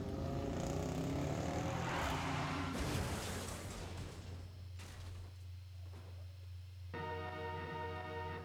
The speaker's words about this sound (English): I guess that was a car crash.